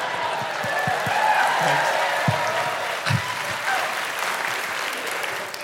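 A huge Manchester audience roars and applauds in a dense, sustained wash of clapping and cheering that holds steady at full volume throughout, with no talking.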